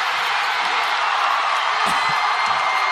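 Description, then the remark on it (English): A huge arena crowd roars in sustained cheering at a basketball game as Iowa's Caitlin Clark becomes the all-time leading scorer in women's college basketball. A loud, steady wash of voices, with scattered whoops and yells rising above it. “Okay, now quiet and let the crowd tell the story.”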